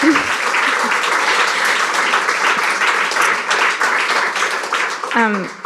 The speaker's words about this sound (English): So can we just, while I catch my breath, give a round of applause to our panel. Thank you.